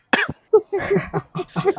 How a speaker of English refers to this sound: Corona, stay safe from Corona, guys. Come on. Don't cough this much.